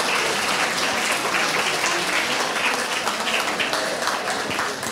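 An audience at an evening camogie awards event applauds the sponsors steadily, many hands clapping together in a dense, sustained wash of sound that stays loud and even for several seconds before easing slightly at the end.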